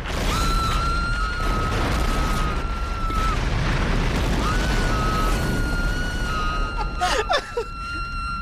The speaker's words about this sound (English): Just the explosion, the scream and the explosion in the back.